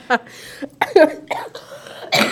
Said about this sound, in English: I was laughing and then I was coughing and now I have to blow my nose.